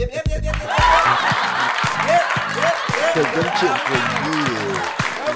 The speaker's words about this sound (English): We need a cheer for that.